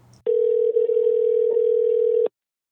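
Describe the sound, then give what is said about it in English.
A steady, unbroken telephone dial tone as a call is being placed hums at one mid pitch for about two seconds, loud and even, then cuts off abruptly, with a brief low murmur just before it begins. “Let's just give him a call and we'll hear it from the horse's mouth. Let me dial him up.”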